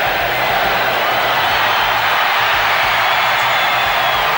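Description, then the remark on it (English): A huge stadium crowd roars in a sustained, dense wall of cheering and shouting at the New South Wales Rugby League grand final as the Brisbane Broncos beat the Dragons 14-6, staying loud and steady throughout, with no pauses or separate voices standing out. “5 seconds to go. The crowd take it out.”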